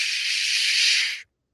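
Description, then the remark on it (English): A bidet toilet's adjustable water spray hisses in a steady, bright rush for just over a second, then cuts off abruptly into silence. No one speaks. “You adjust the way the spray comes. Here's the spray.”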